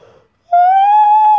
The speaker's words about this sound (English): Anyways, that was a yawn, by the way.